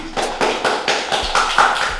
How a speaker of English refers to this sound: That's a wrap. Under the Influence Live. Appreciate y'all. Claps.